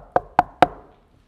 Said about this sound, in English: A BMA missionary came knocking on my mom and daddy's door